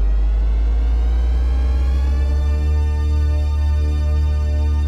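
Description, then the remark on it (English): The THX Deep Note logo: a loud, dense swarm of sustained synthesized tones that shifts and settles into one huge steady chord, anchored by a deep rumbling bass, with no voices. “THX. THX.”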